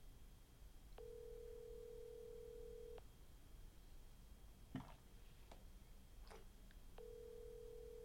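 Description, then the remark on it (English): An outgoing call's ringback tone on a call to San Diego: a steady low electronic buzz lasting about two seconds, a long pause with a few faint clicks, then the tone starting again, over quiet line hiss. “Pick up, dude.”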